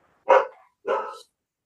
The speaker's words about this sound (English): so sorry, my dogs are of course going nuts at this exact moment. It's a thing.